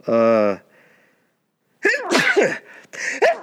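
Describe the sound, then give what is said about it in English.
A single loud sneeze bursts out at the start, then a brief pause of quiet before a person begins talking. “Boy, that last sniff about to make me sneeze.”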